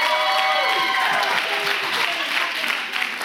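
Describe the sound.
People applauding a pastor, dense steady clapping that stays loud throughout, with a faint murmur of voices mixed in beneath the claps.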